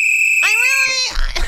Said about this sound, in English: Can I please? Can I blow that whistle? Yes.